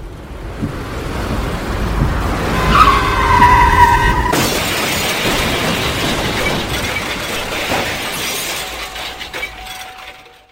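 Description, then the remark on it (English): Car tires screech loudly for a second or two, then cut off into a violent crash, a car smashed hard from behind by another car, with shattering glass and scattering debris that rattles on for several seconds. No one speaks. “As you're about to ask your next question, bright lights and the sound of screeching tires enter your consciousness.”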